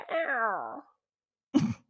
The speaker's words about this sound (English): And as always, we're filmed in front of a live studio audience of annoyed fucking kitty cats.